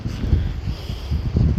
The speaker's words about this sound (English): Lots of fallen branches. It's probably tense, it's a bit windy now and I'm about to leave the woodland.